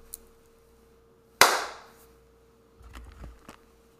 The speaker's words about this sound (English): I just wanted to check the syncing, so let me clap one more time.